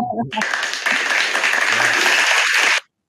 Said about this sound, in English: I'm going to add a clapping here if this works.